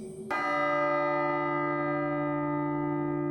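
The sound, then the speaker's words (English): A single deep bell strikes once, tolling one o'clock, and its rich, ringing tone hangs and slowly decays for several seconds, loud and resonant with no voices. “Little did he know, he would soon meet the ghost of Christmas poetry past when the bell tolled one.”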